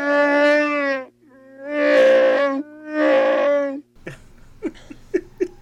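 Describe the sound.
A person's voice imitates a Wookiee with three long, loud, warbling growl-roars in a row, then a handful of short, clipped grunts. No one talks.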